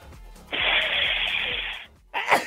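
A loud, close sneeze with a long, breathy burst of air, then a second shorter snort-like burst just after. No one speaks.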